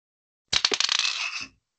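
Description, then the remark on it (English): Dice are rolled during a game and clatter across a hard tabletop, a quick burst of sharp clicks and rattles that slides into a brief rolling hiss before stopping, with no voices. “Well, let's roll a dice to see if you succeed.”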